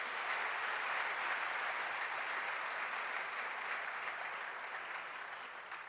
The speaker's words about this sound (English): A round of applause once again.